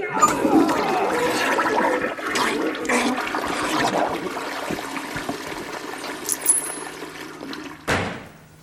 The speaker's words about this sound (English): Hey, that sounds pretty nasty. How about a courtesy flush over there?